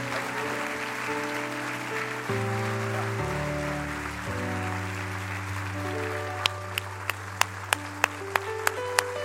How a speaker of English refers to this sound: Everybody in this house tonight that knows Him, clap your hands real big. Come on, right now.